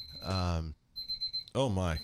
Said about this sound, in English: My timer went off. I didn't know that was still on, sorry.